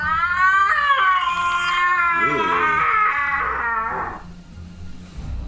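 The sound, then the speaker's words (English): A voice imitates the groaning and creaking of huge tree trunks bending in fog, a long, loud, wavering moan whose pitch bends and slides for about four seconds before cutting off into quiet. “Right, right as that happens, you hear a groan from coming from the trees around you as you hear the creaking of a huge, you know, of huge tree trunks just like bending, going.”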